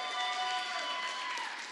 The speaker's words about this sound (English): Let's stand up one more time. Stand up on your feet. Come on, everyone can do it. We're going to stand up. And I want you to scream and shout and clap for our speaker tonight